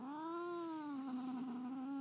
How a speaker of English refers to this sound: He's mean. And I'm not even doing anything to him, and he's just meowing at me.